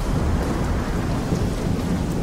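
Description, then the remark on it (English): A fierce hurricane storm roars steadily, heavy rain pouring down under deep, rumbling high winds, loud and unbroken for the whole stretch with no voices. “They can be hundreds of kilometres across, filled with high winds and heavy rains.”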